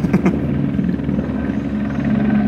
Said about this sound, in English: It's taking its time. It's an ambulance copter. Definitely taking its time.